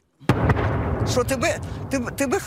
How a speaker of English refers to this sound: described explosions through the night, sending shards of glass flying.